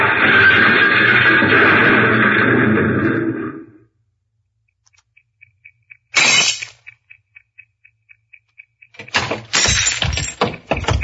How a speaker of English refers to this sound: Taxi Cab Operators Association is speeding along quiet residential Norfolk Avenue in the Roxbury district of Boston, Massachusetts. Suddenly it swerves toward the curb, smashes into the rear of a parked car, and comes to a stop on the sidewalk.